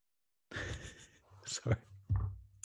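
Heavy, close-miked breathing: a long breathy exhale followed by a few shorter, sharper breaths and puffs of air, loud and right against the microphone.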